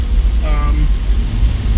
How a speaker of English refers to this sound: Yeah, it's raining pretty hard, so I'm gonna concentrate on driving and doing my podcast and all that good stuff.